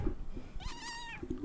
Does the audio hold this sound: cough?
no